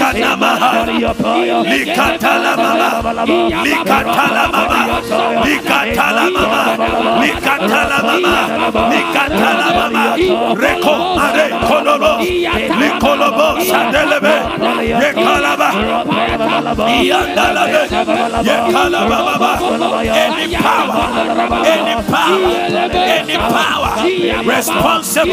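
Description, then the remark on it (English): A large audience praying aloud together while clapping their hands, many voices overlapping in a dense, loud, continuous roar of fervent calling and shouting that never lets up, with sharp percussive hits scattered through it. “Clap your hands and pray for 2 minutes.”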